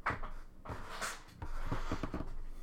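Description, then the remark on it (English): A broken office chair mechanism clunks and rattles, a string of irregular knocks and creaks, with no voices. “I can't tell if my chair is extremely broken or just locked.”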